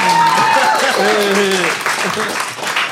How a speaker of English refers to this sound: And if you think that we should embrace the chaos of that comes with no civilization, you have no idea what just happened, clap now.